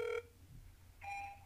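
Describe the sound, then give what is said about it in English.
An outgoing phone call to a friend rings on the line: two short, steady electronic ring tones separated by a pause of silence, with a faint low hum underneath and no voices. “I'm going to call my friend”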